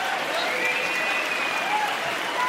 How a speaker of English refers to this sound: We all know them, and we all hate them. Let's give a round of applause to the federal government.